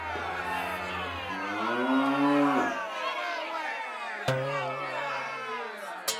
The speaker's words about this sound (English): That's right. There's a cow in there. Let's pretend it's an ox.